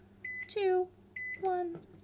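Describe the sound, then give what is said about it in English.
Two short, steady electronic beeps from the keypad of a microwave with Braille letters, about a second apart, each followed right away by a brief voiced syllable, like a talking appliance announcing the button pressed. “So, and I have Braille letters on my microwave in case anyone was wondering what's wrong with this thing today.”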